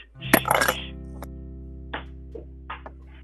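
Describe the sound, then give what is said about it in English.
Glass shatters in a sharp, bright crash, followed by a few scattered light tinkles of pieces settling over the next couple of seconds, with a steady low hum underneath. “Broke glass.”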